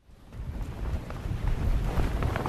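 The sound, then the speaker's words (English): Gusty wind roars across a pier on the island of North Bimini in the Bahamas, a broad low rumble that swells and buffets the microphone, growing steadily louder over a couple of seconds with no voices. “The wind's picking up on the island of North Bimini.”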